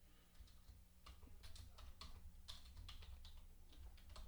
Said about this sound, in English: And So he knows I'm going to have a hard time typing out Cyclops.